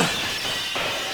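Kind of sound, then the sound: impact, glass shattering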